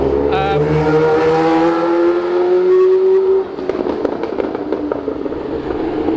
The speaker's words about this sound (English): You can see the F1 roaring by.